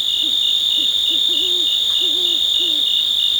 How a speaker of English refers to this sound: We leave you this week with the sounds of a summer night in the Cascade Mountains of Northern California. Crickets and cicadas form the backdrop to the splashes and croaks of bullfrogs. A great horned owl out hunting hoots occasionally.